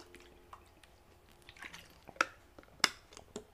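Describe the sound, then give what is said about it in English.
Someone drinks water: quiet, wet sipping and swallowing sounds with a few soft drips and two sharper liquid clicks, and no talking. “I think I'm gonna stick to water today.”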